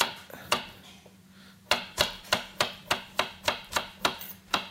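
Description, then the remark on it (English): A knife roughly chops truffles on a cutting board, a few scattered cuts followed by a steady, brisk run of sharp knocks over a low background hum. “I'm just giving these truffles a rough chop right now because we're going to end up putting them in the blender anyways.”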